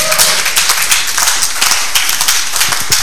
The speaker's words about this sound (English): I didn't say clap, so please, if you are clapping, clap well.